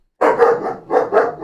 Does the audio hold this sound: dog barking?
yes